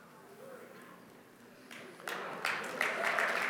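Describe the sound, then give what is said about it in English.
A scattering of light, polite clapping starts softly and builds over a few seconds into a thin, steady patter of applause from a small crowd. “Thanks for the golf clap.”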